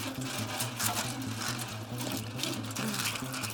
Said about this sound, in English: For the record, I am placing the bundle of fake Natalie documents in a trash can and am now spraying it with this lighter fluid.